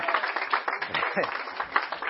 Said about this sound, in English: I think we can give him a round of applause, huh?